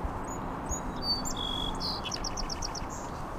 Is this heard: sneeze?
no